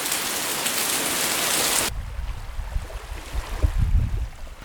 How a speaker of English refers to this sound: What you can hear is the sounds of the ocean, and if we're lucky, some birds chirping in the distance. And I am walking down the beach to a pagoda temple, and it's so peaceful and the view is gorgeous. It's not sunny, it's cloudy,